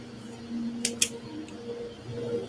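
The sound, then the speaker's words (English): A leaf blower drones faintly in the background, a steady low motorized hum with little change in pitch, interrupted by two quick sharp clicks near the middle. “It could be on my side where there's somebody with a leaf blower.”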